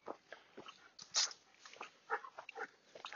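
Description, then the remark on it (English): A dog named Wolves, off the lead on a walk, whimpers and whines in short, uneven bursts, with soft snuffling and panting between the cries, no one speaking. “Alright, I might put you back on the lead, Wolves, because we don't know what's coming up, do we?”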